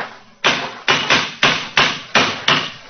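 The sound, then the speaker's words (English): A cane raps hard against a stone parapet about seven times in a loose, uneven rhythm, each sharp knock loud and bright with a brief ringing decay. No voices are heard. “Yes. It's a hard knock.”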